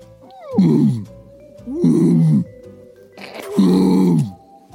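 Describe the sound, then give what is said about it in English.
A person imitates a lion, letting out three loud, low, growling roars, each about a second long with brief pauses between, the throaty rasp rising and then falling away. “So the lion makes.”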